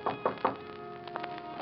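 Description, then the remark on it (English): Three firm, evenly spaced knocks on the wooden door of a 10th-floor suite at the Lorma Hotel on Park Avenue, followed by a quiet pause with a couple of faint, soft shuffling sounds. “But then, how could I think that since Juan would not knock?”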